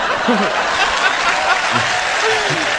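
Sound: audience applause break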